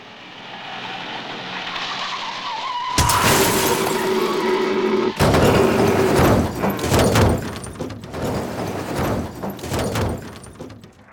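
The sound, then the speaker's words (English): A car driving on the road toward Reedstown hums along with a falling tire-like whine, then hits a buck: a sudden loud crash of impact as the deer comes through the windshield, followed by a second smash and crackling, shattering glass and scattered rattling debris. “I just remember the deer coming through the windshield.”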